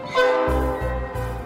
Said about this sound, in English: It can hold up to 14 people in the back, and it's got 5 different horns, including a real freight train horn and a whistle as well.